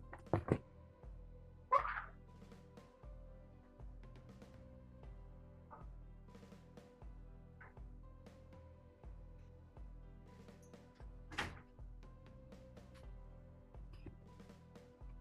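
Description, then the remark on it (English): A few dull thuds of doors being closed, a pair early on and another much later, with fainter knocks in between, while a neighbor's very loud music plays steadily in the background. No one speaks. “I'll just close a couple doors.”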